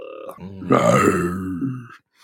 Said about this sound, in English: It is a... is that your growl? It sounded like a growl. It sounded like a deep burp.